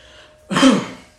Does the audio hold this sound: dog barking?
no